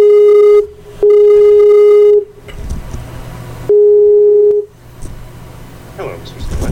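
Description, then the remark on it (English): A loud telephone ringtone heard down the line: three steady electronic tone bursts with short gaps, separated by stretches of muffled line noise and low rumble. “Wow, the ringing was really loud, and then you are quiet and urbane as always.”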